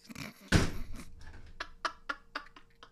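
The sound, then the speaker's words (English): A sharp metallic clatter, then a run of small, quick clicks and scrapes as someone unsuccessfully tries to open a can of seltzer, first with a little hand and then with regular fingers picking at the tab, with no fizz of it opening. “Tell me about your week while I try to open this can of seltzer with a little hand.”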